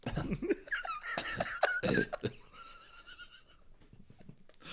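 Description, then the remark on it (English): Several harsh, raspy coughs burst out in quick succession as a person clears their throat, then give way to a longer, wavering, whinny-like call. No talking. “Nobody believes you're coughing.”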